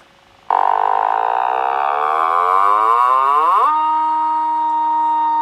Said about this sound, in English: That sounded like a cross... That literally sounded like a cross between a cow and, like, a fart.